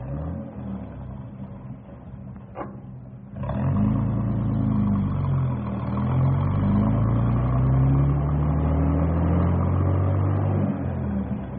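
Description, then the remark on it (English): A large bus engine idles with a low rumble, then a brief clunk and the motor surges louder, revving and pulling away with rising and falling pitch as the bus drives off, with no speech. “Well, we better get this bus rolling, because it's getting close to pickup time.”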